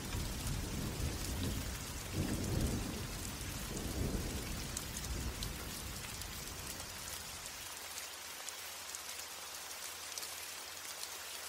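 Steady hiss of rain falls throughout while soft, low rumbles of thunder roll in the first half, fading to just the even patter of rain by the end. No one speaks.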